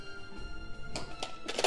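Dice are thrown and clatter in a few sharp, irregular clacks, starting with a solid thunk and ending in a brief rattling flurry. Moderately loud, with no voices.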